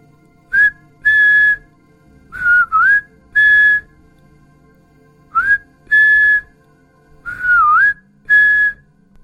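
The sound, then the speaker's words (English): A person whistles a short tune in clear, bright bursts at 3:03 a.m., with a few sliding notes, pausing between phrases. The whistling is fairly loud, with no talking. “At exactly 3:03, we heard the whistling.”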